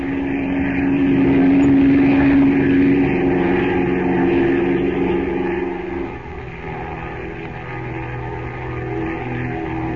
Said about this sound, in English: Then the plane roars up from the river, the two ladders dangling below it, and heads for the Temple of Ashta.